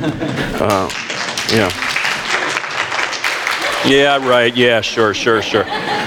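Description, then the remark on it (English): A church audience applauds its spiritual leadership steadily for several seconds, a dense crackle of many hands, with raised voices and cheers rising over the clapping toward the end. “That deserved an applause.”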